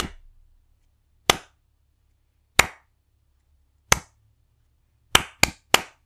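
human body sound, hand clapping

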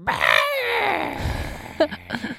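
human body sound, baby screaming and crying

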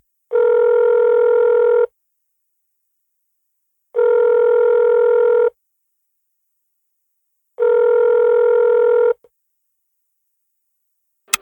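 signal or alarm, telephone dialing and ringing

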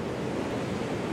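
nature, rushing waterfall

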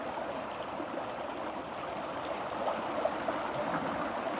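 nature, flowing river water

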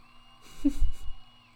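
sound effect, crowd cheering sound effect

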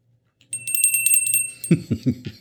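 signal or alarm, hand bell ringing

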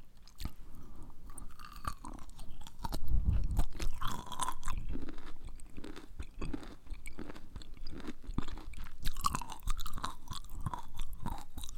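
food or drink, chewing crunchy food

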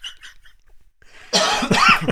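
human body sound, coughing

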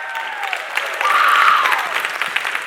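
crowd, audience clapping

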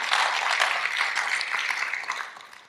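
crowd, audience round of applause

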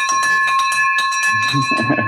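signal or alarm, victory bell ringing

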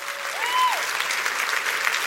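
crowd, audience applause

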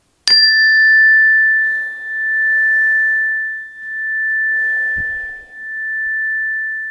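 signal or alarm, meditation chime being rung

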